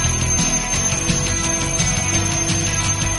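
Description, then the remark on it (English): An alarm clock rings with a steady, continuous metallic bell rattle, loud and unbroken for a few seconds with no voices. “Alarm clock is ringing, that means it's time to get up.”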